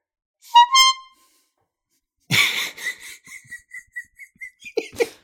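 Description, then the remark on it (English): A voice imitates a horn honk with one short, nasal, buzzy blast, heard over a Discord call whose noise canceling partly cuts it out. After a pause comes a run of breathy, laughter-like bursts threaded with a repeating high squeal, ending in two sharp puffs. “3 stars, bunch of horn honking. You know I love that. You know I love honk.”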